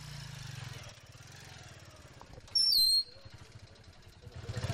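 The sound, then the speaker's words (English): A motorcycle laden with four milk churns, two on each side, arrives from a farm in Kenya; its engine putters with a low, steady drone that swells louder toward the end, broken midway by a brief, sharp high-pitched chirp. “As the day goes on, motorcycles start coming in from farms just over the horizon, each laden with four milk churns, two on each side, a total of 40 gallons of milk for each haul.”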